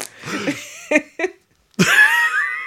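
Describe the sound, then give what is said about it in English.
A few breathy, laughing bursts and short vocal blips, then a pause before a loud, drawn-out buzzy fart sound with a rising, brassy tone that lasts nearly a second. “and then there's the trumpet sound.”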